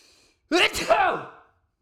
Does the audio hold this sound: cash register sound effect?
no